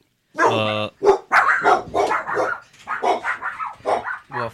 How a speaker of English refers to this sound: The dogs are about to bark.